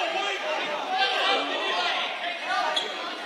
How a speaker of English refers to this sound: And now we got the crowd in it.